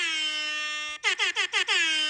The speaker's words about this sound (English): I had the air horn prepared because I was like, it's big, exciting news.